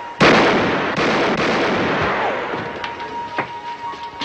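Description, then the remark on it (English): Gunfire from a gunfight at a newspaper office erupts with a loud opening shot, followed by a string of irregular blasts and cracks that rumble and echo, fading slightly toward the end. No voices. “Gunfire!”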